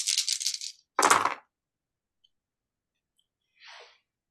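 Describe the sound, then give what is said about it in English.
Stress dice for a wits roll in a tabletop game rattle briefly in a cupped hand, then clatter sharply onto a hard surface. After a pause, a short, softer scrape follows. No one speaks. “I got a 1 on my stress dice.”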